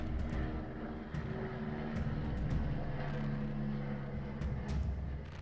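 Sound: police helicopter flying overhead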